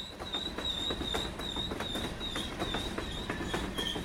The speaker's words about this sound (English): Here comes the train.